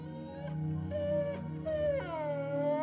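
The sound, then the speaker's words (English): A female dog whimpers in a long, continuous whine as she dares to cross a street, her pitch sliding up and down with a few brief breaks. The sound is fairly loud, with no one talking. “When she turns around to realize we're not following her anymore, she whimpers and dares to cross the street.”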